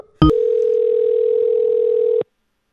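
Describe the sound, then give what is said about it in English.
A brief click, then one steady electronic telephone ringing tone that holds for about two seconds and stops, like the far end of an outgoing call ringing, with no voices. “We're in the sweet spot, though, between 12 and 1, where, like, most people answer their phone.”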